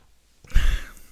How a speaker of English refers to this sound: It's probably a good time to take a sip of some water.